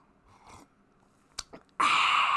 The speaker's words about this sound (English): Hold on as I sip my peppermint tea.